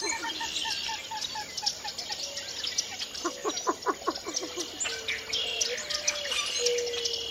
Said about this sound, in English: Along the water's edge, common moorhen darts in and out of the rushes, and a least bittern calls above a chorus of northern cricket frogs.